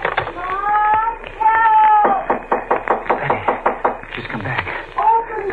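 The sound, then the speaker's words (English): A rapid, steady series of about nine firm, loud knocks on a door by a woman at the door comes after a high wavering cry. A similar cry returns briefly at the end. “She's at the door.”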